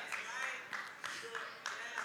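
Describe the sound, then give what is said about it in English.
A few scattered, irregular hand claps ring out over a low murmur of voices, with a brief, faint whistle slipping in among them. The whole scene stays quiet and subdued. “Got one amen, one good, one clap, a slight clap over a hand raise, one whistle, two.”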